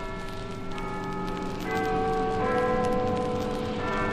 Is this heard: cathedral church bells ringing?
yes